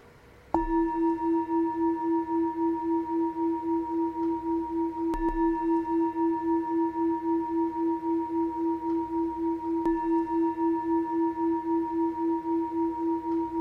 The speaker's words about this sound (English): So I'll ring the gong 3 times, and on the 3rd ring of the bell, please come out from meditation.